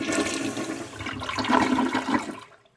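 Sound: flushing water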